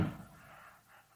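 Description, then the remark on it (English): A single dull firework bang outside thumps at the very start, low and muffled, then fades into a soft rumbling tail over about a second. No voices are heard. “It was a firework, yeah. I thought it was someone banging on that wall.”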